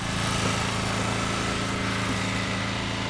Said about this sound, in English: The rumble of backhoes gouging into the earth to make way for new building foundations.